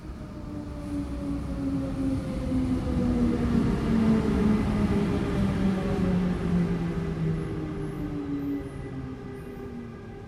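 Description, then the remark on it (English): A train rolls in and slows down at a station platform, its steady rumble joined by humming tones that gradually drop in pitch as it decelerates. The noise stays loud throughout, with no voices. “Soon, you are standing on the train station platform as the dream train approaches.”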